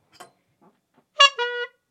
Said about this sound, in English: If you want, you can honk me. Yeah, that's a honk, man. Honk it up.